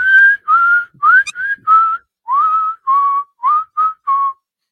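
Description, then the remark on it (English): A man walking down a sidewalk whistles a lilting melody of about ten clear, bright notes, some bending upward, in short phrases with small gaps between them, fairly loud, with no talking. “And he's whistling as he's walking down the sidewalk.”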